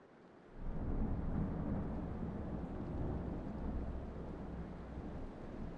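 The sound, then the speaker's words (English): A heavy night-time thunderstorm roars in, with a deep rolling rumble of thunder swelling after a quieter start, blended with gale winds striking hotel walls and steady rain clattering on the window throughout. No voices. “I couldn't say whether it was due to the flashes of light or the noise, but I woke in the night to the storm in full flow.”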